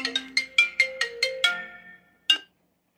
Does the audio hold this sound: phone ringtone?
yes